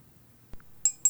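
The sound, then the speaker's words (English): Dice tumbling on a hard surface: a soft knock, then two bright, ringing clinks in quick succession, fairly loud against a quiet background, with no one speaking. “Let me roll my dice here.”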